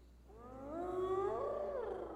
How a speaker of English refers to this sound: Hyenas. There are hyenas out there, folks.